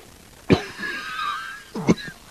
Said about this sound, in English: Sorry, my cough is starting to act up a bit here.